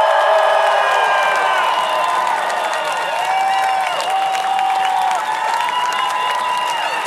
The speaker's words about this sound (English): We saw that in Auckland yesterday. Give them a cheer. Give Auckland a cheer.